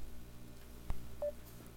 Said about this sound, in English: Oh, there's that Facebook sound.